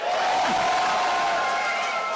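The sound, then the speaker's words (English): An audience voting for Totally Spies cheers and claps in a loud, dense burst of noise, with scattered shouts and whoops rising over steady applause throughout. “One day you will regret your claps.”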